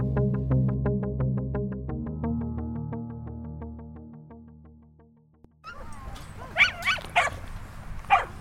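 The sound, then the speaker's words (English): A melodic music intro fades out, then outdoor ambience takes over with several sharp dog barks and yips from dogs running and playing together at Heflinger Dog Park, a 7-acre park beside Maple Street in central Omaha. “On most weekend afternoons, there are dogs running and playing with one another.”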